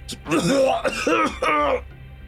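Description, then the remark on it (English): A person voices a man's harsh, violent coughing fit as he doubles over and grabs his chest: three or four loud, strained hacking bursts in quick succession, rough and throaty. “he immediately releases your leg, doubles over and grabs his chest, and just begins coughing violently.”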